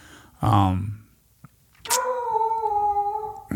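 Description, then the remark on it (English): A dog named Brinkley lets out a short whimpering whine, then after a brief pause a long, steady, high-pitched howl that holds its tone, fairly loud. “It's funny, the dog's been showing us his asshole for like 5 minutes.”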